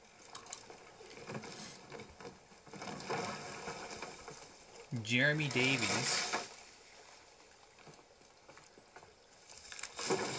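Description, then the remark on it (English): Water sloshes and laps around a small rowboat as it comes in to dock, a steady moderate wash throughout, with a short spoken phrase cutting in midway. “All right, so we dock our boat.”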